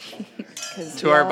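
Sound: wine glasses clinking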